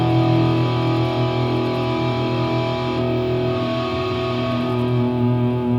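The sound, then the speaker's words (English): A thick, crunchy distorted electric guitar chord, played through a plexi-style amp sound, rings out loud and sustained for several seconds, its gritty overtones droning steadily without a break and with no voices. “So it's just a kind of a big crunchy sound.”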